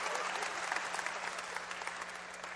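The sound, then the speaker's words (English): An audience breaks into steady applause, a dense wash of many hands clapping at once, sustained at an even, fairly loud level throughout. “And they clap on that.”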